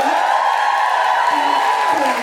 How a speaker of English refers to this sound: And yourselves, give it up for yourselves. This is amazing. I know it's very American to ask you to do all that applauding right now.